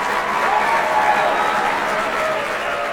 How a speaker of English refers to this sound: Ladies and gentlemen, huge round of applause